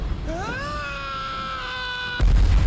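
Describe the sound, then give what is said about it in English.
In a played movie scene, a man screams as a plane flips around: a long, sustained scream that rises in pitch and then holds steady for over a second before cutting off abruptly into a loud burst of rumbling noise. “But his screaming. Listen to his screaming.”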